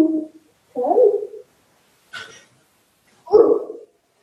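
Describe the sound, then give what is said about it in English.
A 7-pound female miniature schnauzer barks a few times in short, separate bursts, with a higher whining yelp between them, with no voices over it. “She is a 7-pound schnauzer.”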